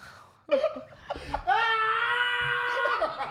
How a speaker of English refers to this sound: Him screaming is crazy.